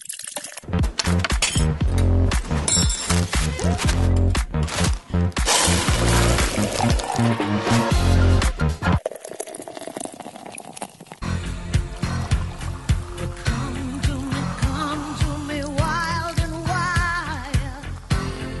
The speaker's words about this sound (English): simulating the sounds of someone pouring and drinking and sighing in delight, right in my ear